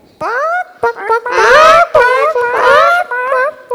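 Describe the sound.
A person imitates a chicken's clucking with a run of loud, warbling bawk-like calls, rising and falling in pitch and repeated in quick bursts.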